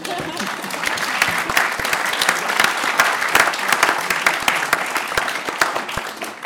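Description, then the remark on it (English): An audience applauds steadily, a dense, even patter of many hands clapping at once that holds at a consistent loudness throughout without any talking on top. “I don't know if it deserves an applause, but I'm done.”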